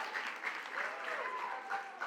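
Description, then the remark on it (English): An audience claps steadily for about two seconds, a dense, continuous patter of many hands at fairly even loudness, with a faint voice briefly audible underneath. “Now, here's the illustration that has taken me forever to get here because you keep clapping, okay?”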